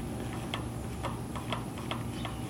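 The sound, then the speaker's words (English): A neighbor knocking out his welcome mat to get the dust off: faint, dull thuds repeating about every half second, five or six in a row, over a steady low hum with no talking. “It looks like my neighbor's knocking out his welcome mat over there to get all the dust off. That's why you hear a banging in the background.”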